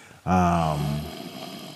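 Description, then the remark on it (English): One loud nasal snort with a rough snoring quality from a person's congested sinuses, lasting under a second, then fading into quiet background noise. “Are you going to snore? Oh, my bad. What the fuck was that, though? My sinuses”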